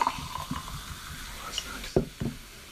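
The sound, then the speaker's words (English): A drink is poured, a soft trickle of liquid with a few sharp clinks and knocks of glassware, fairly quiet and brief. “I'm gonna pour my drink now.”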